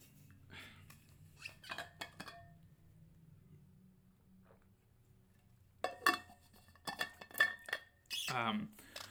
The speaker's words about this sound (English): Hold on, guys. Gotta get some water.